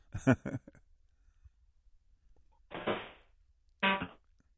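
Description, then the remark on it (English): Choppy, band-limited fragments of a voice drop in and out over a phone line, with short bursts of sound separated by stretches of near silence. “You're breaking up, brother. You're intermittent.”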